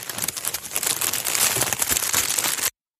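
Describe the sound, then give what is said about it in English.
Busy crinkling and rustling of newspaper as baby rabbits shuffle in their newspaper nest to get comfortable, crackling steadily for almost three seconds before cutting off abruptly. No voices. “Their nest was made of newspaper, and as they'd shuffle to get comfortable, the cats would hold their breath, hoping I wouldn't hear them.”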